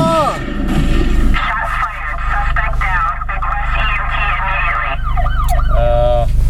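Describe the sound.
An emergency vehicle siren wails with rising and falling sweeps, loud, amid dense background noise and what sounds like muffled voices, with quicker yelping sweeps near the end.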